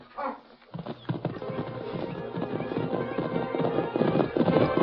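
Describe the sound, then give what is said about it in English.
A horse's hooves clip-clop in a quick, steady rhythm, fairly loud, as a rider leaves on horseback, the hoofbeats growing a little louder and busier toward the end, with no one speaking. “He's going away. I still think I ought to shoot him. Let him go. What's the sense in killing someone unless we're paid for it? Getting to his horse.”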